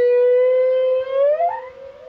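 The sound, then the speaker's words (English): A humpback whale song from a lone male recorded in the Caribbean, a mating call. A long, steady tonal moan rich in harmonics slowly bends upward, joined by a brief rising whoop near the end, with no voices. “This is a humpback, a lone male recorded in the Caribbean. These complex melodic calls are used to attract potential mates.”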